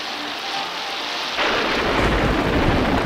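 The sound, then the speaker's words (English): Steady, hissing rainfall pours down on the main street of a Western town in a scene from the 1965 film For a Few Dollars More, and about halfway through a deep, loud rumble of thunder rolls in and keeps growling beneath the downpour to the end. No one speaks. “The man with no name, played by Clint Eastwood, adjusts his poncho as rain falls on the main street.”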